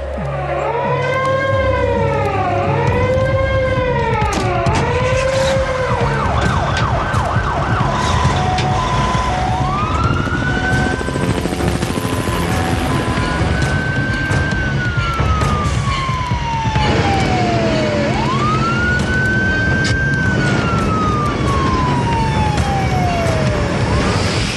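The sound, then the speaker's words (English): Loud sirens of ground emergency services preparing for the crash landing of a fully loaded airliner wail over rumbling traffic, first a fast, rapidly warbling pattern, then slow sweeping tones that rise sharply and glide down again, repeating without any talking. “On the ground, emergency services prepare for the crash landing of a fully loaded airliner.”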